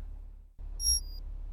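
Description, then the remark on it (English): A single short, high-pitched electronic beep of an internal conduction alarm, with a bright, tonal quality, sounding once over a low, steady background rumble. “This is your internal conduction alarm.”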